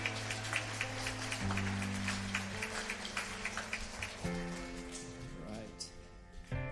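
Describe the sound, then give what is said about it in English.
An audience claps steadily for several seconds in a round of applause for the mothers on Mother's Day, a dense patter of many hands, while sustained low musical tones drone underneath and shift pitch partway through. “And a round of applause for the mothers. Yeah, there we go.”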